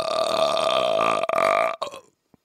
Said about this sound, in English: I could do it when I want. Watch. What's that little noise before you burp? It's sucking in air. That's amazing.